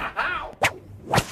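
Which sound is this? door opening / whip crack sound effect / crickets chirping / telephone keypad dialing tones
whip crack sound effect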